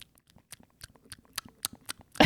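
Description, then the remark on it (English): A voice imitates, into a microphone, a dog chewing: a quick, uneven run of wet smacking and clicking mouth sounds, moderately quiet, ending in a louder, fuller burst. “She was just chewing or just midair or whatever.”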